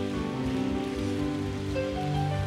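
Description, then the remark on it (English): A church audience claps to the King of Kings and the Lord of Lords in a dense, steady wash of applause that holds at an even level throughout, with sustained keyboard-like tones ringing underneath and no talking. “I want us to give a little clap to the King of Kings and the Lord of Lords.”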